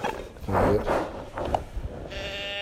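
A deer call gives a nasal, wavering bleat lasting about half a second, followed by a few shorter, fainter squeaks and a thin buzzy tone at the end.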